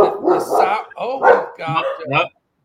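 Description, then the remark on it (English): A new dog barks excitedly at the mailman, about four loud, drawn-out yapping bursts in quick succession, then the sound stops abruptly. “A new dog seeing the mailman.”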